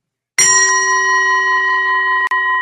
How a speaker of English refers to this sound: And I have my nice bell. So we're gonna start the counting and mantra when you hear this.